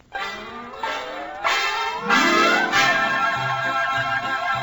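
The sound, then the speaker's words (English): An orchestra led by Henry Russell plays a special arrangement of a short introduction to Jingle Bells, with bright chiming bell notes struck one after another over sustained, swelling tones. It is fairly loud, and no one speaks. “now Santa Claus has come down the chimney just 2 days early and has handed out a very special musical arrangement to Henry Russell and the orchestra.”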